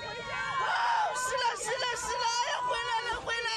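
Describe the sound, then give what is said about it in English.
A dense, excited crowd in China shouts and screams continuously at a staged photo op for the arrival of pandas, many voices overlapping into a loud roar with high-pitched cries rising above the din. “The thing is, what they're shouting out there is recipes, their favorite recipes for panda stir fry and panda soup, and they're going to eat them.”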